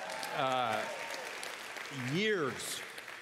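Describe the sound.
A church audience claps steadily for a baby held up before them, a dense wash of applause, while a couple of voices cry out over it with long cheering calls that swoop up and down in pitch.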